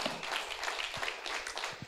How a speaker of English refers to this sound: Well, we're going to do a quick clap.